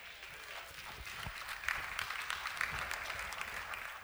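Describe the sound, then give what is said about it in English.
A brief smattering of audience applause during a talk on marriage and finances, a few scattered claps rising loosely together at moderate volume and fading out after a few seconds, with no one speaking. “I'll take that cheap clap.”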